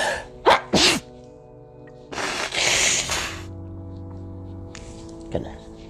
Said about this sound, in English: But I gotta sneeze again.